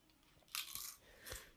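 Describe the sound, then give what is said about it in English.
Close-up chewing with wet, crunchy bites, a couple of loud bursts of mastication right at the microphone, no voices. “I should really stop chewing.”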